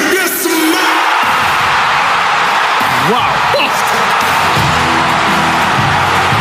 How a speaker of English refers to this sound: Every fan in this stadium had no idea The Rock was returning. It was a surprise, right? Yeah. Listen to the crowd reaction when it happened. Oh, boy. When the moment The Rock's music started playing, it was insane.